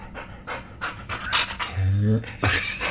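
An excited dog pants rapidly and rhythmically at a home in Los Angeles, with a drawn-out whimpering whine breaking through midway, the breaths continuing in quick bursts around it, as it is told to sit.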